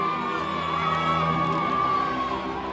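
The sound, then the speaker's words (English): A large crowd lining the Pope's motorcade route cheers and shouts continuously as he nears the city centre, pressing in on the lane the cars drive through. Whoops and high-pitched voices rise over a dense, steady roar of many people. “Back with the radio coverage of the motorcade, and the crowds are building as the Pope gets closer to the city centre.”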